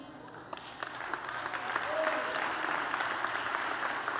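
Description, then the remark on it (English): Scattered clapping from a small audience, a loose patter of hand claps that builds slightly and holds steady at moderate volume for a few seconds, with faint crowd murmur underneath. “And you know why only a few people clapped, or the people who didn't clap loud?”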